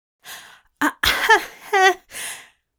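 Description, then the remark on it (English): A voice gives a short series of five breathy, throaty bursts, a cough with some rasping voiced parts in the middle, followed by a soft exhale. No words are spoken. “Aziraphale coughed.”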